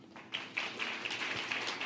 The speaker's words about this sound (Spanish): Entonces, denle un fuerte aplauso a todos los Ujieres.